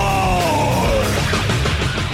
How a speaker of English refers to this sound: Like early 90s heavy metal hard. I'm yelling and screaming and I'm loud.